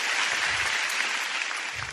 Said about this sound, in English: Let's give God a big hand. Hallelujah. Oh, you want to clap? Let's give the Lord a big clap. Amen.